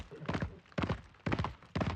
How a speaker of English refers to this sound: Sparks flew as the metal-shod hooves of the heavy horses pounded over the paving stones of Hartunstadter. Six horses, broad of chest and already foaming around the bit, plunged down the street that led to the palisaded gate.